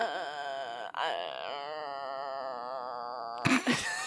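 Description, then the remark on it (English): A person makes their thinking noise, a long, wavering, whiny vocal drone imitating a dial-up modem, holding the pitched tone for over three seconds before it breaks off into a brief breathy burst. “That's my thinking noise. It's, like, my own personal modem.”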